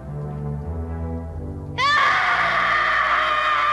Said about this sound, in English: The sentry remembered afterward that he had heard the wildest shriek for help which had ever rung in his ears, and he remembered unbolting the door.